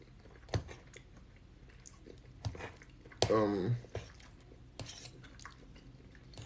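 Wet, squishy chewing of soft plant-based pasta, with a few sharp smacking bites spaced across the moment and a brief murmured vocal sound mixed in midway, over a quiet background.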